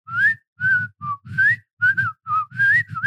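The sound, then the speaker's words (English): A person whistles a bouncy TV theme tune, about eight short phrases separated by brief gaps, with sliding pitches and breathy edges. No one speaks. “Why do I whistle like I'm in the 1930s?”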